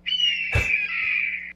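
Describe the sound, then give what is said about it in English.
A single long, high-pitched chicken hawk scream that holds steady and slowly fades, with a brief low thump partway through, no talking. “Where you at, chicken hawk? We did that for you.”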